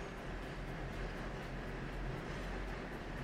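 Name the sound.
subway train rumbling past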